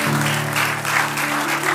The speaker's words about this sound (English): Amen. Give the Lord Jesus a hand clap of praise. Hallelujah.